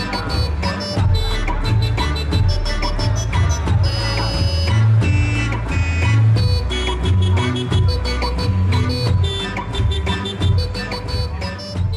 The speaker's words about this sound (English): In this example, Lyft vehicles with orchestral car alarms trigger surprise and delight among unexpecting passersby, establishing a presence for the brand where it wants to make an impact at a music festival